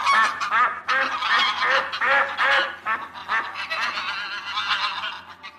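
A flock of wild geese and ducks on a great marsh honks and quacks loudly and continuously, many overlapping calls, with no talking.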